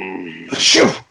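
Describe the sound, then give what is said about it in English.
A single loud sneeze: a drawn-out voiced 'ahh' builds for about half a second, then breaks into a sharp, breathy 'choo' burst that cuts off quickly. “Bless you.”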